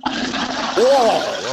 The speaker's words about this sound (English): Give us a flush, Rachel.